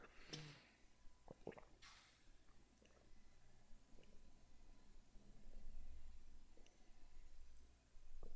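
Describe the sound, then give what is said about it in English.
Someone gulps down a glass of water, with a few wet swallowing clicks and squishy mouth sounds spread over several quiet seconds, a faint low rumble underneath and no talking. “whenever I drink, take a long sip of something, when I'm finished, I just go, ah.”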